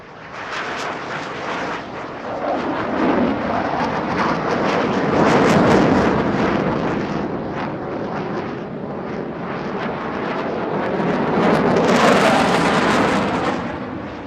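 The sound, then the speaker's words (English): A loud, steady roar of six jets flying in formation across the sky above two hotels by the ocean during an air show, a broad rushing thunder that swells around the middle and surges again near the end, with no voices. “A few moments later, the faraway sound of jet engines got louder, and in a nanosecond, all six jets roared across the sky in formation above the two hotels.”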